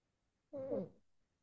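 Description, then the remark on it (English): A single clear cat meow, lasting under a second with a slightly falling pitch, surrounded by quiet. “What you doing, kitty cat?”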